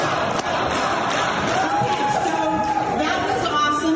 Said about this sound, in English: One more thing that kind of went under the radar. And it's really because it happened during a commercial break. Listen to what the crowd started chanting. And then the crowd gets scolded by an NBC producer.